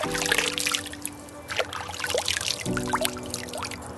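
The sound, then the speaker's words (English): Water trickles and splashes steadily, with small bubbly gurgles scattered throughout, over a low sustained hum of tones in the background. “It's completely immersive. with water that's wet.”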